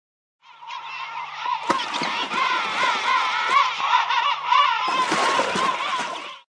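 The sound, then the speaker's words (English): A king penguin gives a loud, continuous trumpeting call with wavering, harmonic-rich honks around a mid-high pitch, lasting about six seconds with a rougher burst near the end. “The King Penguin.”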